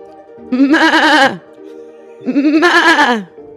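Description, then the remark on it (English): A person imitates a mother goat with two loud, wavering bleats, each lasting under a second, separated by a short pause. The quavering, nasal calls sound clear. “I could go all night. Thank you, everyone. You're a great mama goat.”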